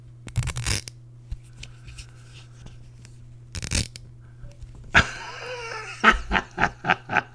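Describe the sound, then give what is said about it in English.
Loud thuds and rustles of a microphone being repeatedly hit during an ASMR recording, two heavy knocks early on, then a flurry of quick, rhythmic bumps and crackles near the end, over a low steady hum. “Keep hitting the mic. I gotta put some sort of cover on the mic when I do my ASMR.”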